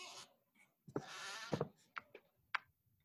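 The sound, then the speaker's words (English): A squeaky chair creaks several times in short, irregular bursts, with thin, high, strained squeals and a few duller groans, and no one speaking. “I hear the squeaky chair.”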